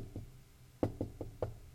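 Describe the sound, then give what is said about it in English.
Gentle knocking on a door: one soft tap, a short pause, then four evenly spaced, moderate knocks, with no voices. “Like politely knocking on the door then until all of a sudden it just stops.”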